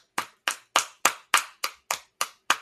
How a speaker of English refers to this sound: Whoever's clapping gets a point taken. I don't want to hear that.